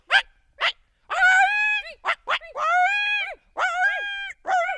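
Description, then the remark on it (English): Two people's voices together imitate a coyote, mixing short breathy yips with several loud, high, wavering howls that rise and bend downward, separated by brief pauses. “If you're guessing coyote, you're right.”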